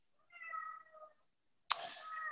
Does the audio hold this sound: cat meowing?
yes